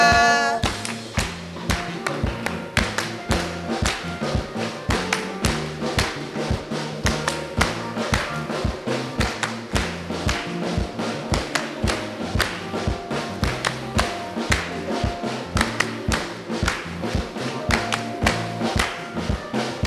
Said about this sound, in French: Applaudissons-nous au Seigneur.